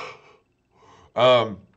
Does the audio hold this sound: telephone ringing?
no